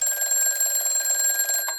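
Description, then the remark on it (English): A telephone bell rings continuously with a rapid metallic trill, loud, filling the moment on its own before cutting off near the end. “Answer the phone. It's Doty.”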